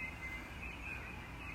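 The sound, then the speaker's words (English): Faint birds chirp in brief high notes over a steady outdoor background hiss, with no one talking. “Listen to those birds.”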